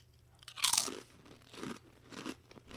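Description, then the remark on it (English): A sharp crunch of biting into a potato chip, followed by a few softer rhythmic chewing crunches, with no talking. “Let's try this crunch test.”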